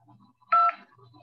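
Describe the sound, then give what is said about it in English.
A single telephone keypad tone for the digit 1, pressed to accept a prepaid call from an inmate at a county correctional facility: one short, steady dual-pitched beep, loud, lasting about a fifth of a second against faint background noise. “To decline this call, press 9 now, and to accept this call, press 1 now.”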